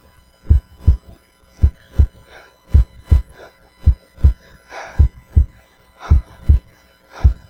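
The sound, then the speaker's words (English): A deep, thumping heartbeat pulses steadily, each beat a paired lub-dub thud, loud with soft hum between beats and no voices. “all of a sudden they heard that heartbeat again and they realized that it was not over.”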